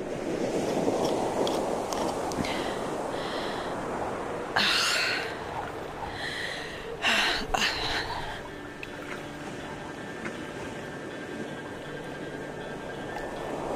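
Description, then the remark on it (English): Ocean waves wash in with a steady, hissing roar, and two louder surges crash around the middle before settling back into a continuous rush of surf. No one speaks. “We're going to scatter Dad's ashes into the waves.”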